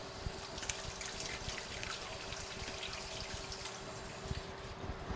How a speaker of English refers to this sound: I, of course, just licked my finger after I cleaned the spoon off, so now I have to wash my hands. Sorry about the noise.